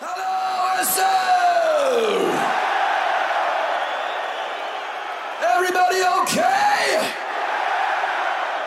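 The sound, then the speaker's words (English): A live heavy metal performance from 2001 by a singer with his solo band blasts with dense distorted instruments and high, wailing screamed vocals that swoop up and down in pitch, loud and continuous, with crowd noise in the mix. “Oh, this is him doing it with his solo band.”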